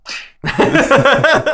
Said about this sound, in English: you get slapped right in the jaw for that. Oh, man. That's not going to be good. I'm going to get a lot of those.